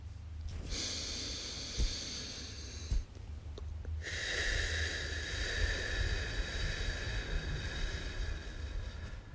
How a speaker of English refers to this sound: Start by breathing with me. In for three and out for five. Let's go.